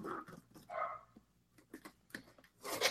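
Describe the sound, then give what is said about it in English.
A dog barks several times in short, irregular bursts, moderately loud, with a few whiny, yelping notes mixed in; no one speaks. “The dog apparently likes it, or he saw a rabbit outside.”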